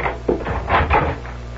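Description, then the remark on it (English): A door opens and swings shut as someone comes back in, with a couple of quick wooden clunks and a latch click over a steady low hum, no voices. “Nobody saw me come in the door.”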